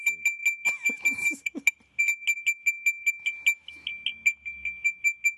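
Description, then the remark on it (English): A railroad crossing bell sound effect, for a train going across the tracks, rings steadily, a rapid, regular series of bright, high-pitched dings, with a short burst of rushing noise near the start. “Sounds like there's a train going across the tracks and we better not drive.”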